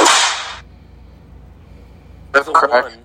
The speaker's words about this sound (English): Number one on our list of three things. Whip crack.